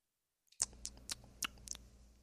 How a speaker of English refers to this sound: I'm going to meditate and eat my chips with the sea salt on there. Total Zen. That's my name. Feel the crunch. Taste the salt.